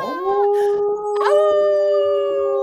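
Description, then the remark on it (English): A man howls like a wolf, loud and close, with a brief wavering opening cry followed by a second howl that swoops upward and holds a long, steady tone. “So let me tell you about this beautiful howling man right next to me.”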